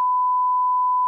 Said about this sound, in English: Okay, that's getting beeped. We might have to bleep that. We'll definitely have to bleep that.